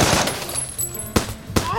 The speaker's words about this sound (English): Machine guns, again? Oh, I hate machine guns!